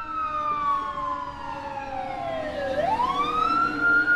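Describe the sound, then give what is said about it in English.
The siren of a big red fire truck wails in a long descending sweep as it passes, then climbs again, loud over a steady rumble of road traffic, with no voices. “Oh, it's big red fire truck.”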